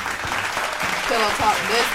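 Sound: round of applause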